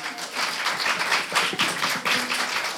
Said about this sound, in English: We'd like to give her a little round of applause.